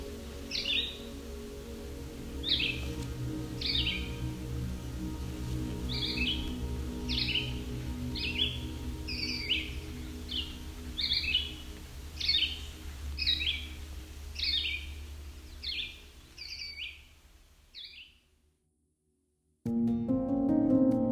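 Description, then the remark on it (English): Wild birds sing in a forest on the Bruce Peninsula in southern Ontario, a steady series of short, bright chirping phrases repeating every second or so over a low ambient hum, before fading into silence and a brief louder outdoor rumble. “it is also an important home to dozens of bird species. This series is a small snapshot of this place, a week in the life, as told by the birds of the Bruce Peninsula.”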